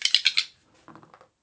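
Two orange dice are rerolled in a board game: they rattle in a quick run of bright clicks, then tumble and clatter across a hard tabletop in several softer knocks before settling. Fairly quiet, with no voices.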